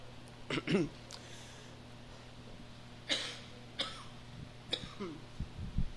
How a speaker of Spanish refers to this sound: Hace rato no tosí nada y ahorita ya estoy tosiendo.